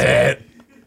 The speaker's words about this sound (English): You burped twice